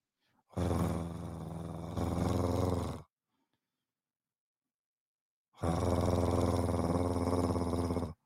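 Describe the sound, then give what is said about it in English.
A person imitates an earthquake with a deep, growling vocal rumble, two loud sustained bursts of about two and a half seconds each, separated by a pause of silence. “That's my earthquake sound.”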